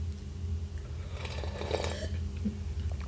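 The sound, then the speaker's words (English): A wet slurping sip lasting about a second, two people sipping drinks at the same moment, set against a steady low hum with no talking. “And thank you for joining us, particularly with another frickin' simultaneous sip.”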